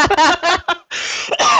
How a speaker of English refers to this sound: And as I start coughing